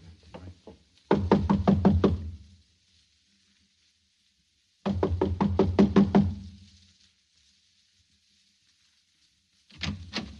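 knocking on a door

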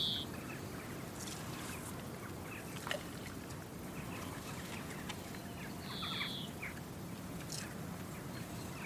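song thrush singing

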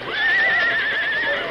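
horse neighing

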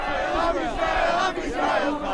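crowd chanting

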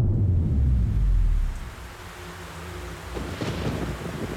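thunderstorm with rolling thunder

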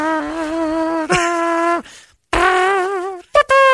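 fart sound effect

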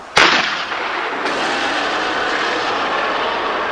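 harpoon gun firing

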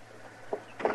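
knocking on a door

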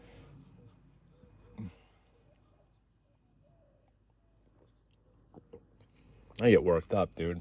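sipping coffee

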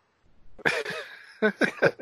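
cough

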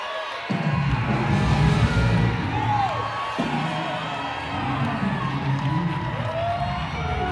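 audience shouting and cheering

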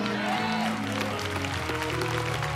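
audience clapping

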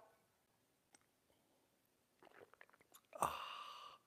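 sipping a drink

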